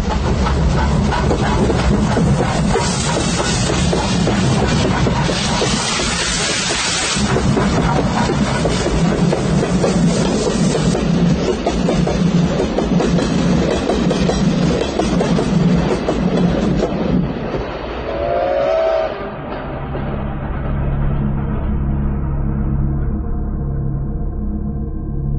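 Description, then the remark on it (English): The Flying Scotsman steam locomotive thunders beneath a bridge, trailing dense smoke, in a loud, continuous roar with dense rumbling and rattling wheels that fades slightly near the end as a brief high whistle-like tone rises and drops away. “The rails sang and the bridge trembled slightly as I was enveloped in a dense cloud of the wonderful creature's smoky breath.”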